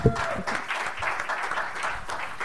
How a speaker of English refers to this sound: You guys can clap, people that are in the room, if you want.